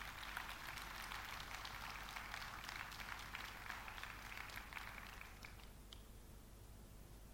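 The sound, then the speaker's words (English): A crowd claps for a drama team in dense, continuous applause that holds for several seconds before thinning out and softening toward the end. No one speaks over it. “Would you please give a round of applause to the drama team.”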